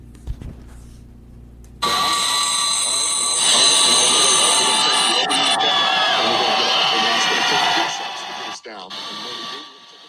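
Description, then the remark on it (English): A huge crowd of Bills Mafia fans roars and cheers at 3 in the morning, welcoming the Bills, a dense, loud wall of voices that swells suddenly after a quieter start and stays sustained before fading near the end. “Huge crowd at 3 in the morning welcoming the Bills.”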